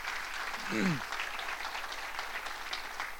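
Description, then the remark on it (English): A church audience claps steadily for the women who have just spoken, a dense patter of many hands sustained throughout, with a brief voiced exclamation rising and falling early on. “I think they need a big round of applause.”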